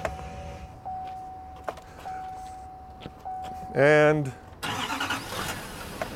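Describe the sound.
A steady electronic chime hums while someone briefly speaks, then a Chevy Duramax diesel truck engine cranks and roars to life, running loudly to the end.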